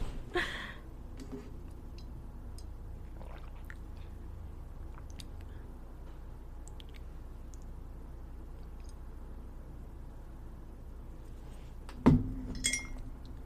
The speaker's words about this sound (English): I'm sorry, I had to drink some water.